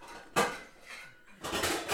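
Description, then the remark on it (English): Pots and pans clatter as someone searches a kitchen for a sauce pot: a sharp metallic clang, a brief lull, then a longer burst of rattling, jangling cookware. No voices are heard. “He's searching the kitchen for an item that he wants.”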